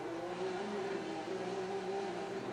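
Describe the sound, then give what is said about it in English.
A racing buggy engine drones steadily at high revs for a few seconds, loud and continuous with a strong harmonic whine, no voices over it. “I like the way that sounds. Yeah, it's a different style of engine.”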